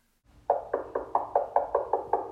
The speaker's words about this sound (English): The Vanderbilts go back to their hotel room to eat, but as they're eating, they hear a knock on the door.